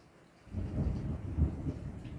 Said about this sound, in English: If you hear some thunder out there, there's a big Skynami coming.